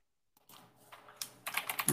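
Rapid clicking of keys on a computer keyboard, close by and fairly quiet, starting after a brief silence and building into a denser, louder flurry of keystrokes toward the end.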